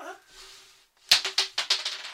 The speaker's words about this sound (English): No, I threw it at her. Having me throw a dice violently at your head doesn't count as.